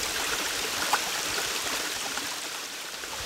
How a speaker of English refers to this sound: This is a little creek that runs right through Dolly's childhood home.